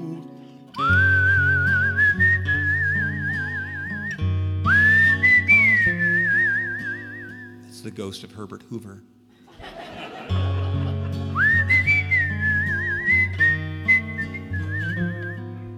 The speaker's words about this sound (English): It's a good whistler.